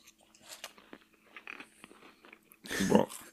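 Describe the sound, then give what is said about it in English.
Crunchy chewing of store-brand club crackers right at the microphone, with scattered small crunches building to a loud burst of crunching near the end, faint voices murmuring in the background. “Yes, continue to chew into the microphone.”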